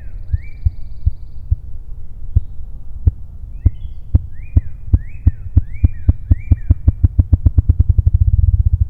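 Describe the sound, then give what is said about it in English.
Deep, muffled wing thumps start slow and spaced, then speed up into a rapid whirring roll. This is the drumming of a ruffed grouse, a low sound made entirely by its wings, with a few thin bird chirps above. “Unlike any bird I've featured so far in the series, the ruffed grouse has a sound that is made entirely by its wings.”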